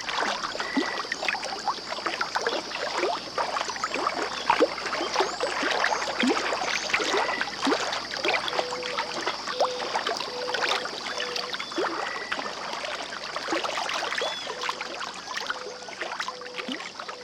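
Steady outdoor riverside ambience on the Hudson River at Iona Island, a bird sanctuary in Bear Mountain State Park at Stony Point, New York: water laps and trickles continuously, a constant high-pitched hum rings throughout, and short bird-like calls repeat now and then. No one speaks.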